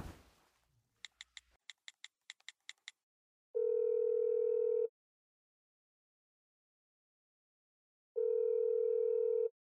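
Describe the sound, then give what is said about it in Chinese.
A phone call goes through as a husband phones his wife again: a brief rustle, a quick run of about eight short dialing beeps, then two long, steady ringback tones separated by several seconds of silence, with no talking. “喂，老公，你怎么又打来电话了？”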